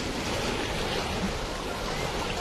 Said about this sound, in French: Que dites-vous ? Parlez plus fort ! Le bruit du vent couvre vos paroles !